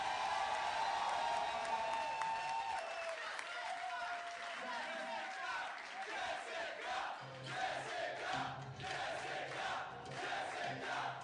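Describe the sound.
An audience cheers and whoops loudly for a volunteer from the audience, then dense rapid clapping builds in the second half, with crowd voices mixed throughout the steady, roaring applause.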